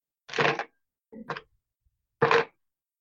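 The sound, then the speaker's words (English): Four dice are rolled, clattering across a table in three quick bursts of rattling clicks separated by brief silences, with no voices. “Okay, roll four dice.”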